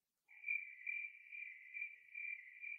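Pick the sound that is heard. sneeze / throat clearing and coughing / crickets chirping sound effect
crickets chirping sound effect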